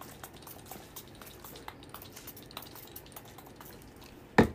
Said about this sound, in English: I go on with two sprays actually, because you know, you want to smell good wherever you're going.